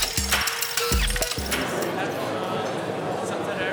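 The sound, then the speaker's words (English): Murmuring crowd noise in a giant former airship hangar used as an exhibition hall at the Eurobike bike show in Friedrichshafen, Germany, over a steady broad whoosh from its mammoth air conditioning system, with a few sharp metallic clinks and clatters near the start. “And that hubbub you'll hear in the background throughout has two sources. One is the mammoth air conditioning system used to keep these giant aircraft hangars, they really are hangars and for airships, at a reasonable temperature.”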